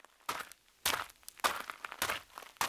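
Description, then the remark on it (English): Footsteps crunch through dry, spiky, leafy underbrush in a steady walking rhythm, five or six crackling steps with rustling between them and no voices. “They walked all day, left the trail and crunched through the spiky, leafy underbrush, scuffed calves and aching feet”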